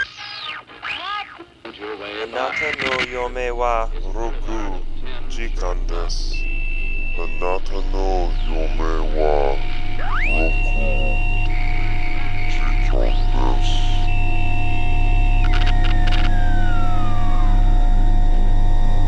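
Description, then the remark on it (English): Continuous radio static hisses steadily, with a faint, garbled voice warbling beneath it early on, then wavering electronic tones and a low hum over the noise. “Listen, there's a voice hidden in the static.”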